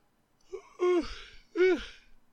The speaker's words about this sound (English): Excuse me. I had to yawn.